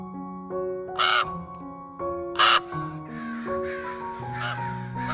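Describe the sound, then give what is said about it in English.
A crow sound effect: three harsh crow caws ring out at uneven intervals, the middle one loudest, over a steady bed of sustained musical tones. No one speaks. “You got to put a bird sound in there somewhere. There you go. We were on the same page. You went from a crow to a baby.”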